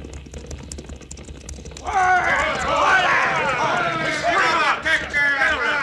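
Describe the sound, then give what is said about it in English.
Horses' hooves of approaching riders thud along steadily beneath a rising clamor of several voices, with the rush of riders and shouting growing suddenly louder partway through as the group draws near, coming from the same direction as the wagons. “Other hombres and horses coming, Cisco.”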